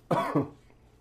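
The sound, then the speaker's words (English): Two quick, harsh coughs in close succession, loud, followed by a brief fading tail and quiet background. “I like your but cough again.”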